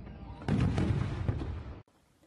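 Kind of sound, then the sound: sound effect, fireworks exploding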